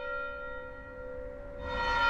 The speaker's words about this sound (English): after the new clock gate was built, they sent away and got a new bell, which is the bell that's there now, which is 1783. So, but we know that there was a bell there before that because there's references to it. There's references to it being rung.